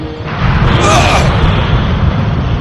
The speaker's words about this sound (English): This is the biggest explosion yet. I don't know how much longer we have.